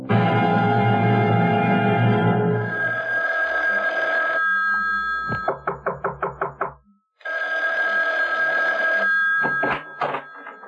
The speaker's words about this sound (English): Isn't that your phone? I hear ringing.